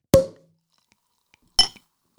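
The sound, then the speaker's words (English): Two bright clinks of glasses knocking together in a toast, about a second and a half apart, each ringing briefly before fading into silence. Fairly loud, with no voices. “Clank, clank. There we go. So, cheers to …”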